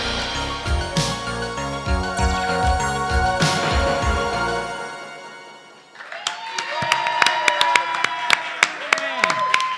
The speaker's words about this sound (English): This week on Transmissions from the Dark Side, we're in a theater. People clap. It's the live show.